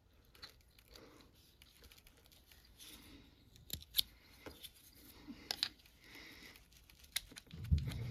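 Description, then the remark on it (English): Scissors snip through plastic tubing in a series of sharp clicks and crisp cuts, irregularly spaced, run along the bottom of the tubing to cut a slit so it can be pulled up and trimmed, with soft handling rustles between and a low thump near the end. “Now, to cut this, to make it easier, I actually take my scissors and I run it right along the bottom. Cut a nice slit in it, and that way I can pull it all up like that and trim it up nice and clean.”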